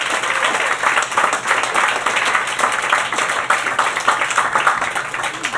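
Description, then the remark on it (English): Sustained audience applause at a show's fourth anniversary, a dense, steady patter of many hands clapping at once, loud and even throughout with no voices standing out. “Let's give them a round of applause for their fourth anniversary.”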